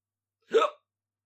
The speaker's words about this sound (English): Hiccups.